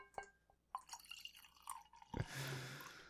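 Wine pours into a glass: a few scattered drips and splashes, then a sudden steady pour that fills the rest of the moment with a bright rushing trickle. No voices.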